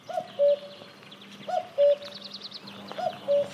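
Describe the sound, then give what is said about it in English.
A cuckoo at the Maddingley Wood field site calls its two-note cu-ckoo three times at a steady, unhurried pace, clear, while smaller birds chirp faintly in the background. “Stevie Bain caught up with Jenny York at her Maddingley Wood field site to find out how cuckoos have the last laugh over their favourite host species, the reed warbler.”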